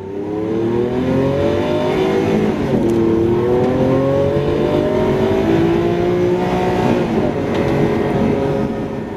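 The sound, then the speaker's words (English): A car engine revs up steadily, its pitch climbing, then dips sharply at a gear change before climbing again. The sound is loud and continuous, with no talking. “There have been several reported cases of teenagers with perfect pitch learning to drive by using the pitch of the engine revs to learn when to change gear, rather than observing the rev counter.”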